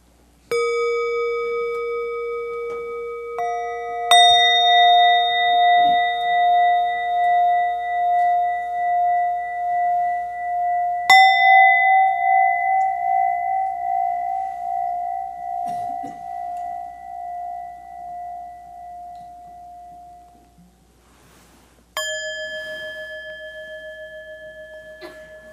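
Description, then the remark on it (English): Meditation bells are struck four times at uneven intervals, each strike ringing out clearly and then slowly fading with a gentle shimmering waver, with overlapping tones and no voices. “And listen to the sounds of these bells.”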